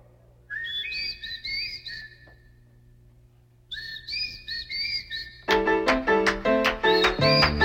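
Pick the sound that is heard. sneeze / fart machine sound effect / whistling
whistling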